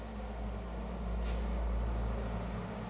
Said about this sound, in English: We've had some noisy traffic out here on Kiel. I hope you've been able to hear me today.